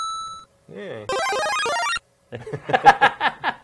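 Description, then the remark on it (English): A short, bright electronic chime, the Mario coin sound effect played from an MP3 file, followed by warbling and busy beeping game tones, then a burst of voices. “Mario coins MP3. Play the coin, see if it works.”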